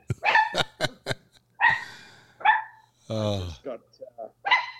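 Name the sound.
large dog barking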